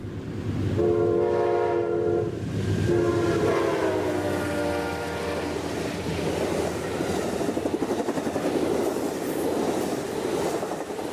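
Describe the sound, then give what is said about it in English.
The California Zephyr passenger train slowly pulling out of Chicago, sounding two long horn blasts before settling into a steady rumble with rhythmic wheel clatter. No one speaks. “As a man stood by the side of the track with his camera, waving at the California Zephyr as it's slowly pulling out of Chicago.”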